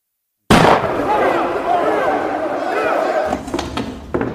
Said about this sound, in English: Then you hear a gunshot and one of the kids is missing.